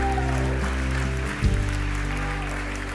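An audience cheers, shouts and stomps in Jesus' name in a noisy, continuous wash of crowd sound, layered over sustained organ-like music with a brief thump near the middle.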